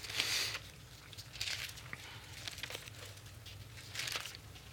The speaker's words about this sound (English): Love to hear them pages turn. That little wisping sound. Whoosh, whoosh, whoosh.